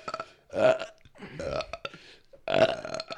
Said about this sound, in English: Which, we were talking about actually burping on command. Oh, I can do it. I can do that.